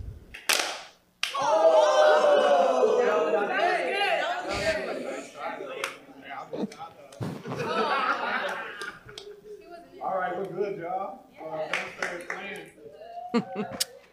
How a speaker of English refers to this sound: Now close your eyes and we're gonna clap together. No count. Here we go.